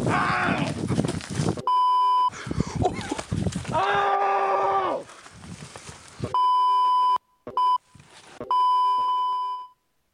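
Several sustained electronic beeps, each lasting about a second, sound loud, broken up by short gaps. Between them come chaotic, strained vocal cries that resemble bleating or screaming.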